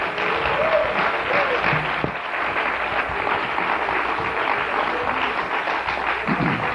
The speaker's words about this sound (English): Everybody stand. Clap your hands to the glory of God.